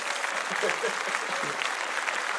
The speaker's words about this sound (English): Let's clap that up.